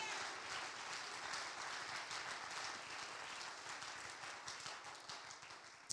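An audience claps hands in praise of God at an evening church service, a dense, steady wash of many overlapping claps at even loudness with no voices, ending with one sharper clap.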